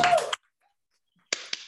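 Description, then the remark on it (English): Hand clapping: a brief flurry of sharp claps, then about a second of silence before two more crisp claps. No one speaks. “Yeah, I just clap for Adrian for no reason.”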